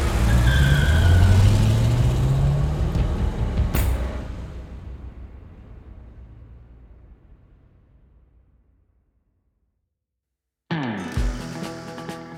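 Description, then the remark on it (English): A Ford car's engine roars loudly as Clyde guns the accelerator, its pitch climbing as it accelerates and drives off into the fog, then the growl steadily fades to silence. A short burst of unrelated tonal sound follows at the end. “Clyde guns the accelerator and the Ford roars off into the fog.”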